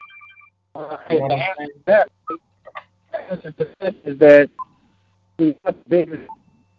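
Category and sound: fault, phone call cutting out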